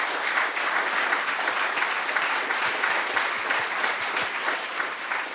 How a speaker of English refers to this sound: And I'd like all of you to give these guys a big, big applause.